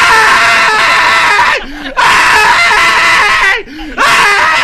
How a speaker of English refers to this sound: There you go. Keep screaming.